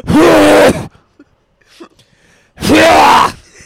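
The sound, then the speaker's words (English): Two loud, forceful breaths blown out by a person expelling air from their stomach, each lasting about a second with a strained, groaning voiced edge, separated by a short quiet pause. “Expelling all of my stomach breathing air.”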